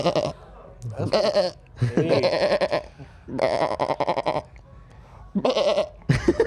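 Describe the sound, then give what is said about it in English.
A man repeatedly imitates a goat's bleat into a microphone, four or five loud, wavering vocal bleats separated by short pauses. “That's a pretty good goat noise.”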